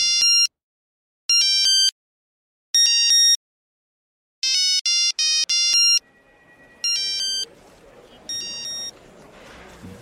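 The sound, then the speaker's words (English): A new mobile phone's ringtone plays a rap song as a choppy melody of bright electronic note bursts, loud, with a rough background murmur creeping in during the second half. “You have a new phone.”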